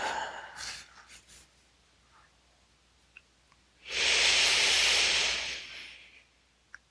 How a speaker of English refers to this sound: This breath, the 12-fold lower belly breathing is specifically useful, its utilitarian value, its primal.